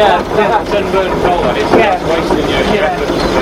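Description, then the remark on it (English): A small steam engine's exhaust hisses and rushes steadily, with faint irregular pulses in the noise, while a person talks over it. “Now we've got a nice healthy exhaust.”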